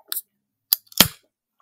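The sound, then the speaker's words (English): A can of Wet Hot Colombian Summer beer from Bad Idea Brewing being opened: a small click, then a sharp metallic crack of the tab, followed by a short burst of fizzing hiss. No one speaks. “So who wants Sounds to open good. Their beer first?”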